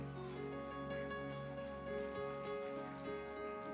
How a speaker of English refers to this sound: That's a real nice golf course clap. Thank you.